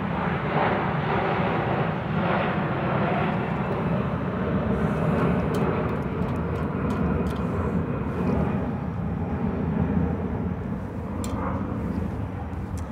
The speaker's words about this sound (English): And of course, wait for it. Yes, fuck off plane. Fuck off plane. Fuck off plane.